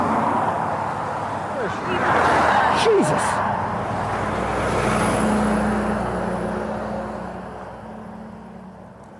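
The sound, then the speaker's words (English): Fast, heavy road traffic roars past cyclists on an often very narrow road after Durrow, the rushing noise swelling as vehicles sweep by in quick succession, while a man lets out a brief startled shout over the din. “The cycle from Feather to Durrow had been pleasant, but suddenly we were in fast, heavy traffic on a road that was often very narrow.”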